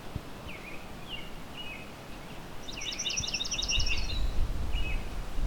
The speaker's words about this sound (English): There's our swamp sparrow. For swamp sparrow, it doesn't need to just be a swamp. It could be a marsh, really any kind of wetland. Really, in this region, any kind of wetland.